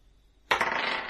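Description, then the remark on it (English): Dice clatter onto a hard table after a brief quiet moment, a sudden rattle that keeps tumbling and skittering steadily until the end, with no voices. “Behave, dice.”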